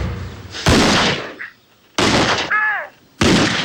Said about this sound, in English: And you hear the three gunshots, and that's what I meant about, you know, to qualify my head pulvering moment.